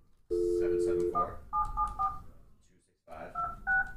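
A steady dial tone gives way to a rapid series of touch-tone keypad beeps as a phone number is dialed, pausing briefly before a few more tones, with faint background noise beneath.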